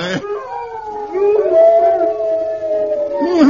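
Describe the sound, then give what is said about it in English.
A pack of hounds howls together outside in long, overlapping wails that rise and sustain for a few seconds, loud, with no talking. “Hey, did you hear that? There's a whole pack of them. There's a whole pack of horrible hounds.”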